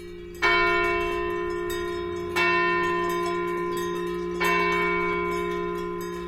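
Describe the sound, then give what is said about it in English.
A church bell in a Swiss alpine village tolls the Angelus three times at slow, even intervals, each strike loud and close with a long humming decay, while faint, scattered cowbell clanks come from a herd of belled cows heading back to the barn. Recorded by Stephen Feld. “In a Swiss alpine village, Stephen Feld recorded a herd of belled cows heading back to the barn as the Angelus chimes from a nearby church.”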